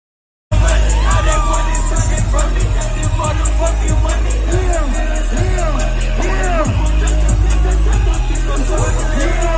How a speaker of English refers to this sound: there's another really cool image of here that you can see of him on stage with fans, of course, in there as well, going absolutely crazy in the crowd. I'll play that sound again so you can hear it.